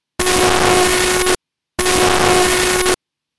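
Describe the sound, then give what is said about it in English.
Buzzy, noisy synthesized sonification of a home battery's discharging power data, varying with when appliances run, including a fridge freezer's regular 80-watt demands, in two loud bursts of just over a second each, a steady low hum running through a rough hiss, with a brief gap of silence between them. “Next up is discharging, which is more random and buzzy, depending on when we run appliances.”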